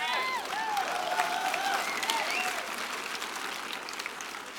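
A crowd applauds in a steady, dense wash of clapping that holds for several seconds and eases off slightly toward the end, with a few voices rising and falling above it.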